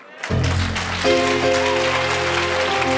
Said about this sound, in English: Oh, those who are clapping.